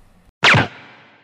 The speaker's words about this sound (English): The sound of the gun bullet whistling past her head almost gave her a heart attack.